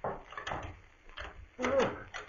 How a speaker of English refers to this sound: Wait till I unlock the door.